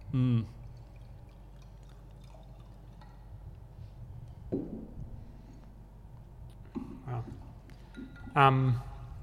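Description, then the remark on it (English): Beer being poured into a glass, a steady low splashing and gurgling that runs throughout, with a few short louder bursts of voice breaking in now and then. “Well, I've got an empty glass, so I'm going to help myself.”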